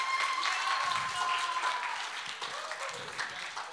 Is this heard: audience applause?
yes